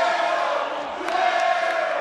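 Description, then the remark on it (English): A large wrestling crowd yells and chants in Spanish at the wrestler Mundo during his match with Aerostar: a steady, loud roar of many overlapping voices, sustained without a break for about two seconds, with no single speaker standing out. “They're yelling something in Spanish at Mundo.”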